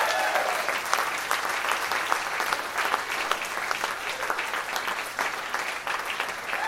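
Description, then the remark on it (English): An audience at a comedy show claps steadily for a performer for several seconds, a dense wash of many hands with crisp, bright slaps, holding at a fairly loud, even level throughout. “Guys, give her a big round of applause.”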